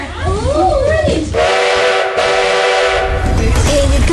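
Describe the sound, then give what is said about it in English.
A loud, steady train horn sounds for about two seconds as the train departs, after a moment of voices. Busy background noise continues underneath and faint voices return afterward. “All aboard, everyone! All aboard the train!”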